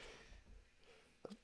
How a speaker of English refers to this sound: I got to sneeze here. One sec.